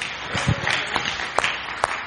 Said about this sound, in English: Give our puppet team one more round clap of praise.